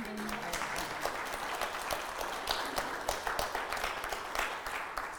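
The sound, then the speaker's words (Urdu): An audience applauds steadily, many hands clapping in a dense, continuous patter with sharper individual claps standing out, sustained at an even level throughout without any voices. “تو اس بات پہ تالیاں ہو جانی چاہیے.”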